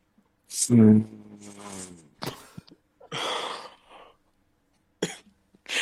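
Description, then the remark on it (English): A breathy sniff rasps through after a voiced grunt as a person sniffs the inside of a bag of wings. A few short snorting breaths follow, with pauses between them. “… sniffs the insides.”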